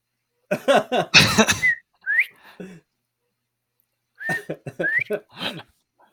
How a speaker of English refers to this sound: Give us your whistle call